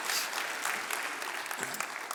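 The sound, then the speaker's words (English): An audience applauds, a steady wash of many hands clapping at once, dense and sustained for the whole stretch with no voices standing out. “You can go and clap.”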